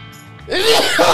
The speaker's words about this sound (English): I got to sneeze so fucking bad.